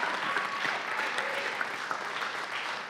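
An audience claps steadily for a few seconds, a dense, sustained patter of many hands with no voices standing out.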